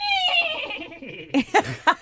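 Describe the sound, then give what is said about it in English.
Someone vocally imitates their kitchen door creaking as it slowly closes on its own after a push. The door needs oiling. The imitation is a drawn-out, descending whinny-like squeal lasting about a second, then the person breaks into a few short, sharp bursts of laughter. “My kitchen door makes the noise of a horse that whinnies.”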